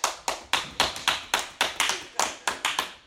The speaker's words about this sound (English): And we're going to cheer you on. Come on, y'all clap for it.